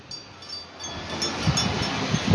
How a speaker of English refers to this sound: Oh, wait a minute. Car.